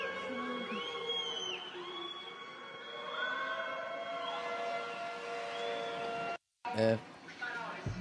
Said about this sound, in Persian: صدای آژیر میاد از مسجد، از مسجد خانه اصفهان.